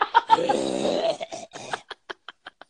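A raspy coughing fit with a drawn-out, gravelly hawk of phlegm from the throat, trailing off into a string of short, evenly spaced coughs that grow fainter.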